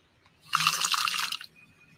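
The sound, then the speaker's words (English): A short splash of water poured into a container, a bright, rushing trickle lasting about a second before it stops, close by and moderately loud, with no one talking. “And I'm going to put this thing inside of it like this. Make sure it's, I might need a little bit more water.”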